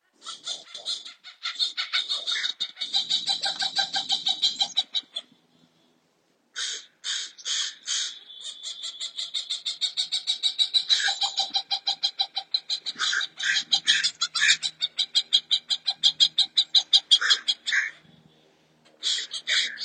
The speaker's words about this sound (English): And if you want to hear the hawk and the crows, I'll play them right now.